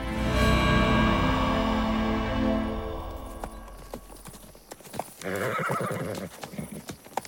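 horses trotting and neighing

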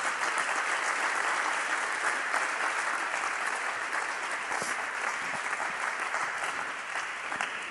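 audience clapping hands

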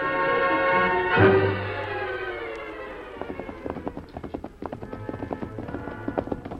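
horses galloping

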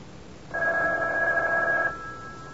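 telephone ringing

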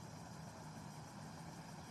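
car engine idling

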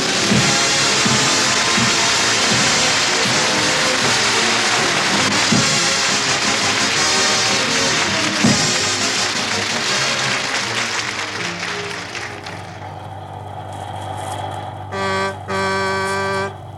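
bus engine running

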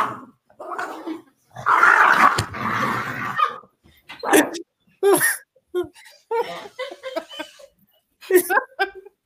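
dog barking and growling

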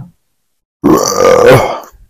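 burp

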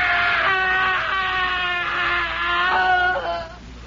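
man screaming in terror

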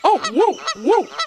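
goose honking

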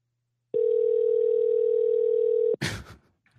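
phone call ringing tone

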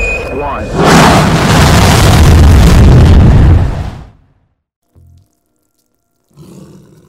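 tiger roaring

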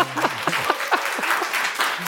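audience clapping

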